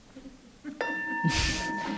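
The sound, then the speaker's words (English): A bell is struck once to time a one-minute turn per person in a group exercise, ringing with a clear, sustained metallic tone that lingers steadily, with some soft rustling noise underneath as it fades. “All right, I can ring the bell.”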